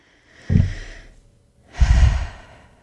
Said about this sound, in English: We'll feel the rib cage expand on the inhale for 5, hold for 2, and exhale for 7.